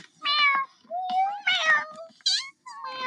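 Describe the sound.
A voice imitating a cat, letting out about five loud meows in quick succession with brief pauses between them, some rising and some falling in pitch, with no other talking.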